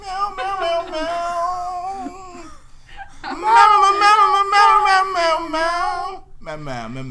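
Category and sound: animal, cat meowing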